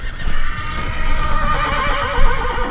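A horse tied at a trailer in the Pinedale ski-joring parking lot whinnies loudly, a long wavering neigh that rises and falls for a couple of seconds against a low outdoor rumble.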